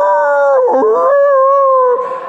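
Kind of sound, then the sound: animal, dog howling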